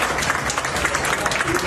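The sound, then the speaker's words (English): A crowd of airline passengers applauding the co-pilot who landed the diverted plane safely in Panama City, a dense and steady patter of many hands clapping at a fairly even loudness, with some voices faintly mixed into the clapping. “Relieved passengers applauded the co-pilot, and there was another ovation for the crew as they walked through the airport terminal.”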